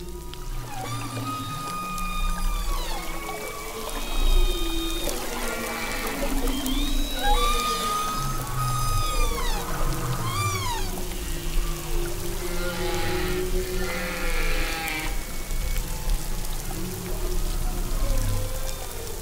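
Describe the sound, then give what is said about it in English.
Soft, overlapping calls of a whale mother and her calf trade back and forth underwater: gliding tonal moans and short upswept squeals over a steady low rumble, continuing for the whole stretch with no voices. “Most whale species will kind of murmur to their babies, and their babies will like murmur back.”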